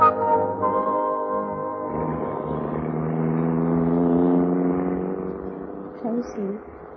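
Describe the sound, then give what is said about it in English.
A car engine hums steadily, then its droning pitch shifts and swells as the vehicle pulls away, loud, with a faint squeak near the end. “Take them to the car, Angela, and let's get going”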